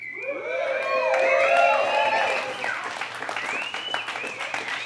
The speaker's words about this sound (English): I just got a room full of people to cheer for a box. And not for the first time.